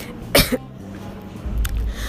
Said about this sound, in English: I'm having a bit sore throat and a flu, also coughing a bit, so I'm sorry if the cough is a bit disturbing.